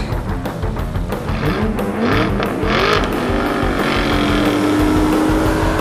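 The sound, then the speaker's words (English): A Renault Fiat Fun One's engine revs hard and accelerates away, with a sustained high squeal of tires screeching over the roar as it cuts in front of cars and speeds off through traffic, loud, with no voices. “The tires screech.”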